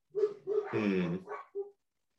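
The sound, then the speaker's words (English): Dogs barking: a quick run of short barks, one longer drawn-out howling bark, then a final yip before it falls silent. “Even the dogs are bothered by the thought of it.”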